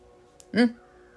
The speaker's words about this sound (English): And there goes the crow again.